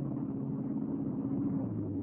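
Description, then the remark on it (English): A car engine drones steadily with a low rumbling hum, a continuous interior driving sound at moderate level with no voices, as the car drives out to a hardware store on Mayor Avenue. “Right now, we're all getting into my car and driving out to the hardware store.”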